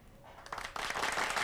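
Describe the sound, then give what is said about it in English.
A canned applause sound effect opens the sports show Downright Sports, swelling in quickly, a dense crackle of many clapping hands that grows louder after a brief lead-in and keeps rising to the end, with no voices over it. “All right, whoa, hello, the applause is not real.”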